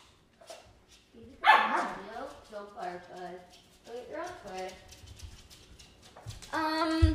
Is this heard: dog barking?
yes